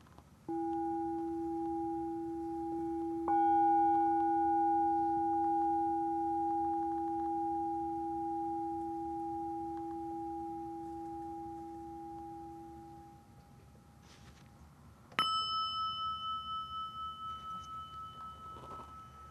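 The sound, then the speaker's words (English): Bells are struck three times, each leaving pure ringing tones that hum on and slowly fade. The last strike sounds higher and brighter. The sound is steady, with no talking. “And the bells”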